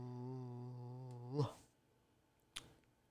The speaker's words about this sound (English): What was that? A yawn.